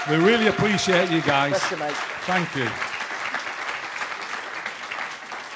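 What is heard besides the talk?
audience applause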